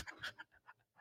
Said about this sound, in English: Stop breathing into the mic. Just CPAPing right into it.